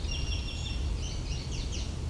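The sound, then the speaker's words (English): A Baltimore oriole's chatter call: a run of quick, high, scratchy notes repeated in a steady sequence over low background rumble, with no voices. “Also that chatter there. Is one of their calls.”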